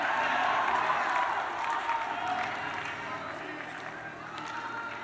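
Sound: hands clapping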